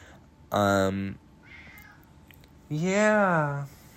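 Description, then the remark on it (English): A pet cat meows twice, a short flat cry followed after a pause by a longer, louder meow that rises and falls in pitch, with only faint background noise between. “Yeah. My cat.”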